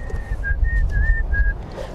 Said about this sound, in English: Oh, I guess I shouldn't whistle.